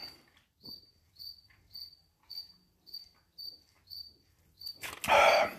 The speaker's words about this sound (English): There's a cricket down here too. You guys, it's probably loud as fuck. Where the fuck is it? Hold on. Oh, there he is right there. Hey! Quit chirping! Stop!